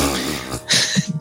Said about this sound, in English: Hang on a second. I'm going to mute myself while I blow my nose.